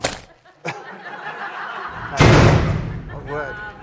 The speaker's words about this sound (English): That is a gate crashing at the same time, which should be a little bit later on. But anyway, you get the idea.